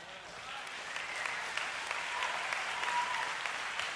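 A crowd claps steadily, a dense wash of many hands from a large group, sustained at moderate loudness throughout with no voices standing out.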